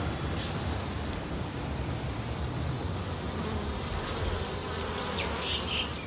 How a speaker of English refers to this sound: but the one most commonly kept is the bee. And if you put the hive above people's heads, then we clear the flight path and hopefully we won't get stung.